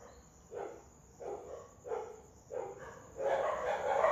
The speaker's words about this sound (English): Like, yo, fam, what the fuck are these dogs fighting, bruv? Let's be honest, bruv. Like, yo, fam, yo, these dogs can see some other shit that we can't see. Legit. They're probably fighting some fucking evil spirits, like some witches.